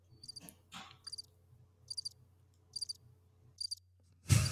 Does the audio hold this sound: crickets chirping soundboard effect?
yes